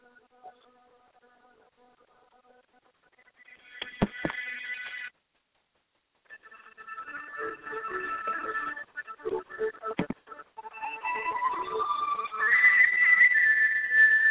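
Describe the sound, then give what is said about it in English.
A slow, melodic song plays through a small phone speaker, sounding thin and tinny, with a brief silent gap before the music resumes and builds slightly louder. No one talks over it. “Yes, it is a slow song.”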